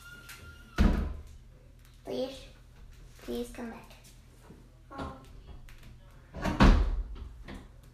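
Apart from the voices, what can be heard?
door being shut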